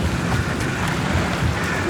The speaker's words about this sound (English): And I just remember sound, the big swirl sound of just the rushing white water and the cold and the noise and the busyness of the flow.